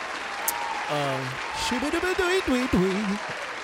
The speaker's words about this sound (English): Matter of fact, let's stop to do that. Real quick, hand clap.